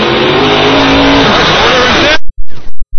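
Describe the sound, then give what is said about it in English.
A fire truck engine at a firefighter competition, revved as a hydrant is hooked up, roars loudly and steadily with wavering pitch for about two seconds, then cuts off into a few short, punchy revs in quick succession. “So Scott Rice, give it a couple of revs.”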